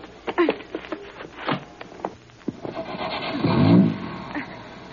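A car's motor is started: the engine cranks and catches with a few sputtering bursts, then revs up into a louder, rising roar toward the end, with no talking.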